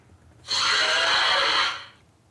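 A monster gives a single loud, harsh snorting roar lasting just over a second, raspy and congested like an elephant blowing its nose, with no talking around it.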